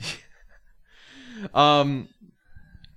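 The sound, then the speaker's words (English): A close, drawn-out yawn right at the microphone: a breathy inhale swelling into a loud, voiced groan that peaks and fades, with faint mouth noises after. “You stop yawning on the mic, please.”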